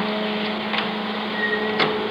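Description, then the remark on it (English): A photo print dryer in a darkroom where copies are being made runs with a steady mechanical whir and faint tonal hum, broken by a couple of soft clicks. No one speaks over it. “Kill that dryer, will you?”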